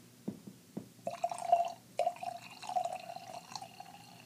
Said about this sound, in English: Wow, that is the most satisfying wine pour sound. Do you want some or do you want to wait until yours is empty?